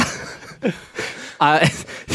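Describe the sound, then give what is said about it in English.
A brief comic surprise sound effect from a soundboard: a loud, sliding, wobbly tone that swoops and wavers for a moment, preceded by a few short breathy bursts, with no speech. “the soundboard says comic surprise.”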